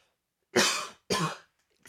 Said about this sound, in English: Oh, let me cough.